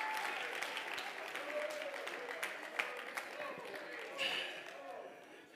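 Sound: audience clapping hands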